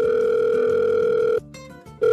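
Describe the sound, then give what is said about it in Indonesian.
A steady electronic ringing tone of an outgoing phone call to a friend holds for over a second, cuts off briefly with a quieter pause, then starts again, loud with no voices. “Oke, gue telepon ya.”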